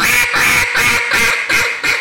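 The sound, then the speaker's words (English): A duck hunting call blown in a quick, steady series of about six loud, raspy quacks, each clipped short with brief gaps between, with no voices. “That, to me, sounds ducky, right? Like, that would kill ducks.”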